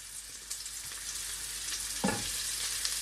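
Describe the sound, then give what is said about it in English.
Shallots, garlic and ginger sizzle steadily in a hot pan, a dense, even hiss of frying with a brief scrape or stir near the end. Moderately loud, with no voices. “I always love hearing that sizzle in the pan.”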